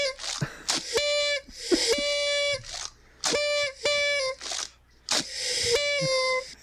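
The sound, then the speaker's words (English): A voice imitates a champagne bottle popping and pouring, with breathy hissing bursts and sharp clicks alternating with sustained, steady-pitched tones in a repeating pattern of about five phrases. “Pouring that bubbly.”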